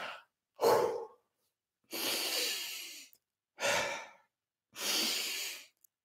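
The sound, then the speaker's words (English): Slow, deep, deliberate breaths demonstrating a change in breathing, alternating sharp inhales and long airy exhales, about four or five cycles with short pauses between them and no talking. “Like I said to you earlier on, I can just immediately, as I started to change my breathing, I feel lightheaded already.”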